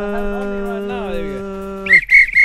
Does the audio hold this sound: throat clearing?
no